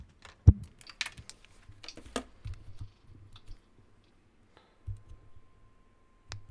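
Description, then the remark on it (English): Headphones being unplugged and swapped: irregular plastic clicks, taps and handling rustles scattered over several seconds, with a sharp click near the start and another near the end, no talking. “I'm going to switch out my headphones.”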